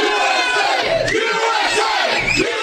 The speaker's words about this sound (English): That's a crowd this morning outside the Tillis Gym opening now.